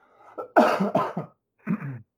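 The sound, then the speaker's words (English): A few harsh seasonal allergy coughs in quick succession, followed by a brief pause and one more rough cough, with a slight throaty clearing quality and no talking. “Also, I have a seasonal allergy cough.”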